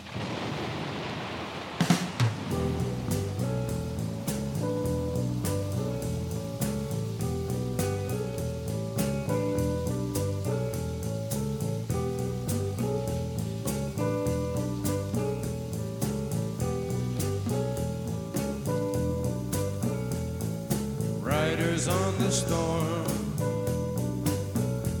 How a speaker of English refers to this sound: they got like the thunder in the background